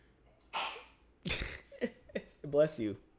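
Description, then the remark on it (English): A woman gives a single sharp sneeze with a breathy intake before it, followed by a few brief voiced sounds from another person. “Bless you, producer lady.”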